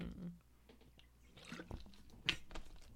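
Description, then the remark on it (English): Someone takes a sip of water: a few soft, wet slurping and swallowing sounds in an otherwise quiet moment, with a brief sharper click near the end. “I actually have some water here.”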